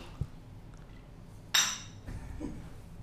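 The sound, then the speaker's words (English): Beer bottles clink together once in a Fourth of July toast to America after a USA goal, a single bright, ringing glassy knock midway through that fades quickly over a low, murmuring background. “A little 4th of July chuggy. Nice 4th of July chuggy. America. Cheers, America!”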